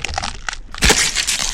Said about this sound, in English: In a flash, Satan grabs Nelly by the head. Before she could do anything, he crushed her skull between his hands.